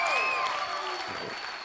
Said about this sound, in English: Come on, if you believe it, let's give God a big clap of praise right now.